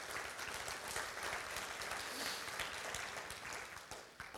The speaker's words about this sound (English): And let's give our online crowd a good hand.